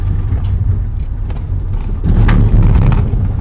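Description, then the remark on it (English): A car rolls over a cattle grid, a steady low rumble with faint rattling clatter that swells louder partway through and stays heavy to the end. No one speaks. “Oh, it's not like the sound of a cattle grid.”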